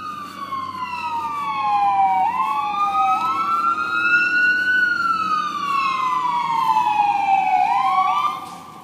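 A fire truck siren wails in long rising and falling sweeps over a low engine rumble, growing loud as it passes before cutting off near the end. No one speaks.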